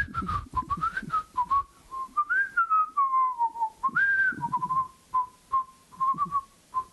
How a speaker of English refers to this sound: We're not going to have a Star Wars whistle off right now.